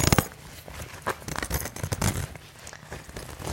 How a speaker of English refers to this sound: Like, there's no better description than it's a giant sleeping bag. But it's definitely heftier than a sleeping bag. And you zip yourself up and zip yourself in.